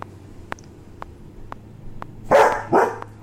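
A dog gives two loud, sharp barks near the end, preceded by a steady series of faint clicks or taps at roughly half-second intervals.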